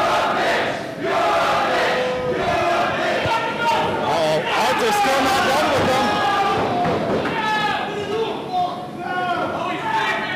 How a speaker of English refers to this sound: Like the result, Arthur coming out of nowhere, hitting the chin. The crowd is not happy with that.